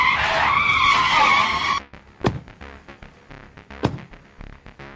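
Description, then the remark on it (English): A loud, sustained tire screech as a vehicle brakes hard and skids for nearly two seconds, then cuts off, followed by a few sharp clattering impacts. “Hit the brakes!”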